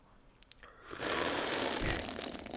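Someone slurps a drink: a second of quiet with a few faint clicks, then a loud, airy, gurgling slurp that runs steadily for about a second and a half.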